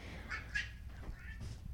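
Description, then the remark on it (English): Several short, nasal cat meows come in quick succession from cats play-wrestling with each other. The meows are fairly faint, with soft background noise and no talking. “They're like in playtime mode and they're like wrestling each other and they're meowing and it's just like out of control.”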